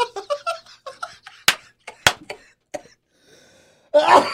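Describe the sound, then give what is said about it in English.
Choked, sputtering coughs after a sip of Pepsi goes down the wrong pipe, two sharp bursts amid breathy laughter, ending in a rough noisy exhale, fairly loud. “And that's why I'm having this little coughing issue right now.”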